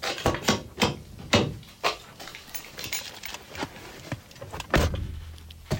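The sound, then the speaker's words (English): A car's sliding side door is worked and slammed shut, with a series of sharp thuds, clunks and rattling mechanical noises spread across a few seconds, no voices. “Yeah, make sure that side door is closed.”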